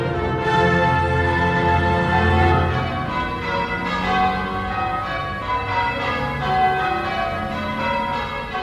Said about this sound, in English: Well, we grew up in this street to the sound of bells. Christchurch, we still have with us. They have a beautiful ring up there.